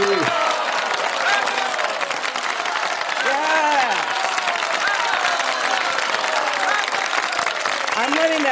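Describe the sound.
Sustained studio audience applause welcoming an author guest to a live studio, a dense steady roar of many hands clapping at an even, loud level throughout, with some voices faintly audible within the crowd noise.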